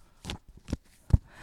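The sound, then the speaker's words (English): A woman shuffles a deck of fashion icon cards with pink backs, heard as three or four short, papery bursts at uneven intervals, fairly quiet and without anyone talking. “So she's shuffling.”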